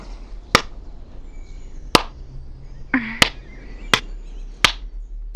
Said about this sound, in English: Golf clap.